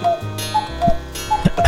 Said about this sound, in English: Oh, you know how much I love the sound of the cuckoo bird out of the cuckoo clock.